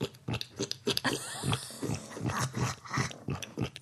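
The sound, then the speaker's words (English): A person does a pig impression of Sigmund with a rapid run of snorting grunts and squeals, fairly loud, in a choppy rhythm that lasts a few seconds with no speech. “It's really like I upgraded my pig impression that I was doing when I was a little kid.”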